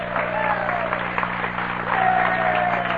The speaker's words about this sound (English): And wherever Ernie is tonight, wherever the vendors of the world are tonight, living their tiny lives, give them an applause. Hooray for the vendors!